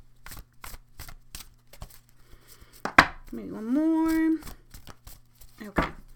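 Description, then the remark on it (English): A deck of cards is shuffled poker-style, a series of crisp riffling snaps and taps in an uneven rhythm, with a brief spoken remark in the middle before the shuffling resumes. “Let's get them shuffled up pretty good there.”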